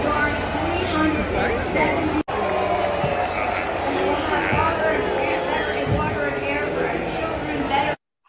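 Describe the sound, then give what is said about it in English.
A large crowd in New York City boos Nancy Pelosi steadily, a dense, loud wash of jeering voices that carries on for about eight seconds with only a brief cut partway through. “Yeah, she was getting booed. Not just booed, but booed in New York City.”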